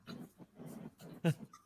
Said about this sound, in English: Did you just go woof?